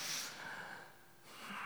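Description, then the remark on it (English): A long, airy breath taken during a prayer with eyes closed, a soft noisy rush of inhaling and then exhaling, quiet and unhurried with no talking. “Take a deep breath.”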